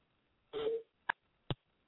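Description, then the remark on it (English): A faint phone notification: a short buzzy electronic tone, then two quick sharp blips spaced about half a second apart, with no talking around them. “My phone is making some noises.”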